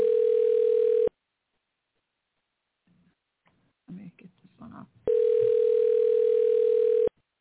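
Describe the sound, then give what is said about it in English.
A telephone rings in two loud, steady electronic bursts, one at the start and a longer one a few seconds later, with brief muffled voices in the gap between them. “It's ringing.”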